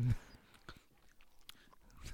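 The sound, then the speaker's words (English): Someone chews loudly and theatrically, impersonating Norm MacDonald's Burt Reynolds chewing: exaggerated mastication with wet smacks and crunchy clicks in an uneven rhythm, no talking. “I wish people on, like, that are listening to us could see you visibly just chew like that.”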